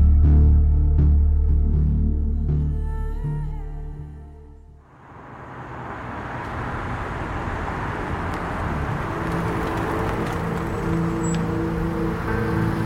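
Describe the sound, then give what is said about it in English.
A cab's engine rumbles at a low idle, then gives way to a steady wash of tire and road noise as the cab pulls up and keeps running. “It feels like 10 minutes of a car pulling up.”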